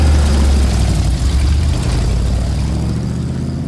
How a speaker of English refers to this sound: It's got tigers and lions. If you pitch those down, it's perfect for engine sounds like that. So every time he turns on the engine, you hear a lion roar or a tiger roar to kind of create this animalistic feeling.